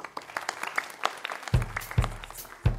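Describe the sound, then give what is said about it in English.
A crowd claps in a dense, steady round of applause, with a few louder low thumps breaking through midway as the clapping continues. “And then once you've finished, you're going to get a big round of applause.”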